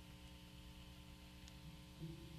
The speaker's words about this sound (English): I had that static.